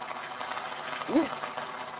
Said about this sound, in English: It's supposed to be the impact. And then here's the applause. Like, or something. Yeah, like if you try to, like, okay, you did so great, we want to give you some applause.